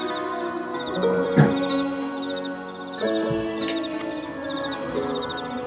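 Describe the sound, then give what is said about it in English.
A chirping crickets sound effect: crickets chirp in quick repeated bursts at a steady rhythm, a continuous nighttime chorus with a faint tonal hum underneath and no one speaking. “I think those crickets you hear are in Joe's head.”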